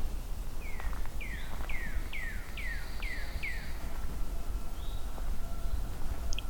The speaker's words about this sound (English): Seems to be in these woods here somewhere, off trail. They're very skittish birds, so I don't want to spook it by moving too much. But this is the loudest I've heard it yet. The most I can feel it even. When it does the drumming.